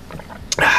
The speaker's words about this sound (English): Speaking of which, I should take a sip again.